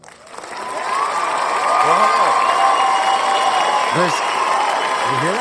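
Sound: applause and cheering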